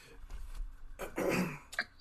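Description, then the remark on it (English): A raspy throat clearing, a rough guttural rumble lasting about a second, followed by a brief catch of breath, with no talking. “Let me clear my throat for a second.”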